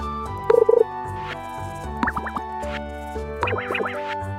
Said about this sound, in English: So we have sound volume, ambient volume, and footstep volume. That all sounds fine. Fishing bite sound.